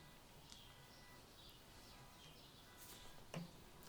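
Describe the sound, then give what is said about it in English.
Faint, scattered birds chirp outdoors on a small patio at dusk, a few short high tweets spread across a quiet background hum, with one slightly sharper chirp near the end. “As the birds chirp themselves to sleep on my little patio.”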